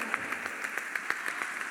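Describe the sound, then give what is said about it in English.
A church audience claps in a soft, steady patter of quick, even beats, with no voices over it. “Is this the way you clap for?”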